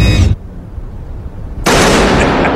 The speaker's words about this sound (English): No kidding. It sounds like a real gunshot, obviously. You better warn the neighbors if you're going to do that in your front yard, for sure.